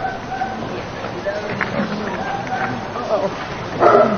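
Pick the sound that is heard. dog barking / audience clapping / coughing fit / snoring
dog barking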